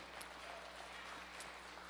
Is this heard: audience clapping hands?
yes